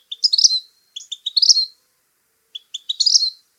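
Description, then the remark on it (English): A vermilion flycatcher calls three times in quick, high-pitched bursts of rising chips and twitters, each phrase accelerating into a brief trill, heard clearly with silence between. “and today's featured creature, the vermilion flycatcher.”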